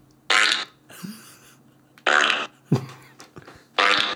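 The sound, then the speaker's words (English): Three loud, buzzy fart sound effects from a keyboard app burst out in a steady, evenly spaced sequence, each about a third of a second long, with quieter rasping squeaks and sputters in between. “Have you downloaded a fart app?”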